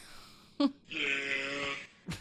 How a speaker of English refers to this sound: Still a goat. I've never heard that one. No. Wait, are you sure? Yeah, it's a goat.